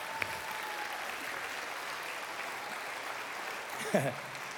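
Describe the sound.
An audience applauds in a steady, dense wash of clapping that holds evenly throughout, with a brief voice rising over it near the end.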